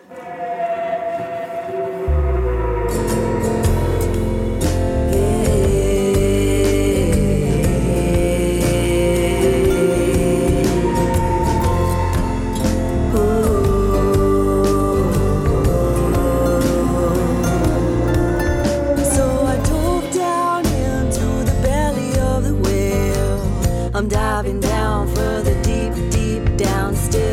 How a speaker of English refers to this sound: here's the title track off of … on Songs and Stories